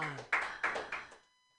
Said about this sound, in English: Clap it up for him and his white privilege.